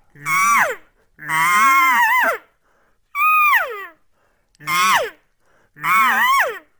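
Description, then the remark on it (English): Five imitated cow calls of the sweet 'here I am' type, each a loud, reedy, nasal mew that bends in pitch and then drops away, separated by short pauses. The second call is longer than the rest, and no one talks. “I'll start with a sweet cow call, just the just a nice sweet here I am type cow call to where I can become more insistent.”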